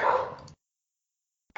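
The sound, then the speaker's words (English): A dog gives a single loud bark lasting about half a second, followed by a silent pause before another bark starts right at the end. No one speaks. “Sorry, my dogs.”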